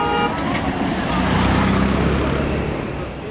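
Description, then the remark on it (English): Dense road traffic in India rumbles steadily while car horns toot repeatedly, the honks layered over the engine noise of passing cars and trucks, with faint voices in the mix. “The roads are total mayhem. Drivers ignore lane markings.”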